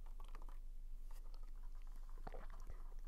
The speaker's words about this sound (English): I don't want to have this conversation, but once I'm done sipping my water, it's going to happen.